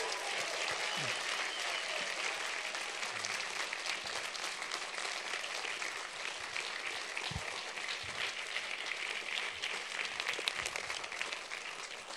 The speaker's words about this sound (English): Let's have a lovely warm round of applause for everyone that's involved in these films.